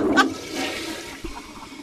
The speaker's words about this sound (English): Then, to make matters worse, I panicked. And then I, in my panic, I don't know what I was thinking, of course, because I panicked, I flushed the toilet.